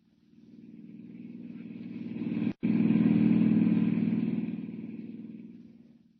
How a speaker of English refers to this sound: Hiring a car, Clark Kent heads out at once on the dusty road to San Miguel, 50 miles away.